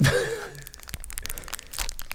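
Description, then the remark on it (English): A wrapper of a crunchy miniature Heroes chocolate being unwrapped: soft, irregular crinkles and crackles of thin foil or plastic over a couple of seconds, fairly quiet, with a brief breathy sound at the start. “Yeah, do you want to unwrap that as well?”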